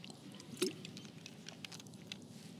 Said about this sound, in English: The Bible says, I need a sip of water for this.